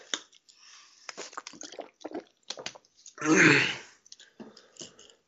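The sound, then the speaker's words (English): Wet sipping and swallowing sounds as someone takes a swig of water, with small clicks and squishes, followed by a louder breathy gulp or exhale near the end, then a few quieter mouth noises. “I think, hold on, I need to get a swig of water here.”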